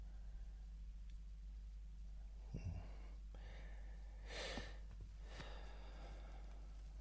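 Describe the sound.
A voice imitates snoring: a few rough snorts and gasping breaths separated by silent pauses where the breathing seems to stop, fairly quiet, with no talking.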